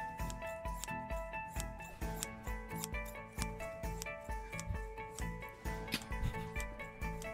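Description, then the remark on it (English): Metal scissors snip repeatedly in a steady rhythm, each crisp cut ringing with a faint metallic shimmer, with no talking over the sound. “ASMR scissors.”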